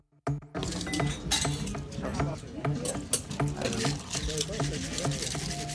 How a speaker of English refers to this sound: With the inviting sound of a cocktail shaker filled with ice and the clinking of martini glasses, we take you on location with a toast to an American institution, Broadway.